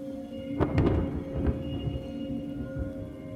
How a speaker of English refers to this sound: The storm carried on outside. The rain continued to pound the roof. Thunder shook the walls and the lightning displayed the room in ominous shades of black and blue.